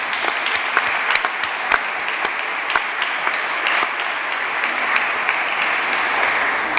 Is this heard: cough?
no